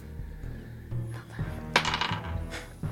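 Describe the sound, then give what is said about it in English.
Dice clatter and tumble across a surface, rolling a 19: a rattling burst of clicks that peaks and settles within a second, with faint low thuds around it and no talking. “19 on the dice, which becomes a 26.”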